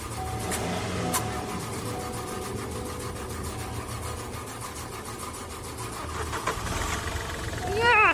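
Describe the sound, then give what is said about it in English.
A car engine cranks over and over in a steady, rhythmic chug, straining to start without catching, fairly loud, with a brief rising whine near the end. “The car chugged and chugged.”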